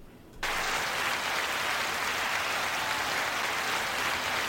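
A crowd bursts into applause after a brief moment of quiet, the dense clapping holding steady and loud for several seconds without any voices.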